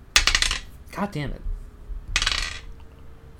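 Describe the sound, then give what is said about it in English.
A large die falls and clatters and rattles across a hard surface in two bright bursts, with a brief exasperated curse from a man between them. “So, it's gonna be one roll of the big die.”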